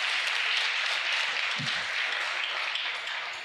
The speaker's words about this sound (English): I give them a round of applause again. Thank you so much.